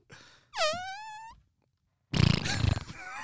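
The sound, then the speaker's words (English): Someone imitates fart sounds with their mouth: a brief low rasp, a buzzy, rising tonal blurt, then after a pause a loud, rough, sputtering burst. “I was gonna say, will you make fart sounds that I will make the faces too?”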